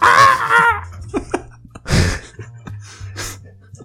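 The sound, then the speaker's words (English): A human voice imitates a bird with a short, high, wavering warble, then breaks into breathy gasps and soft laughter over a low steady hum. “Did you work on the bird noise for that?”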